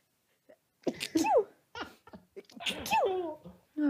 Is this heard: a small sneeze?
yes